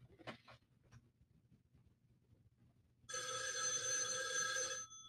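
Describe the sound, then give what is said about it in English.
An old-fashioned telephone bell rings in one loud, continuous burst lasting under two seconds, preceded by a few faint clicks and soft rustling, played by Arthur as he opens the phone lines on a call-in show. “He gave us that old telephone ringing.”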